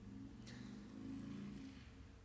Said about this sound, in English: Did you hear that? Somebody thumping a motorcycle out there. Like, burr, burr, burr. Like, dang! I don't know if the mic picked that up. Somebody thumping it out there, though.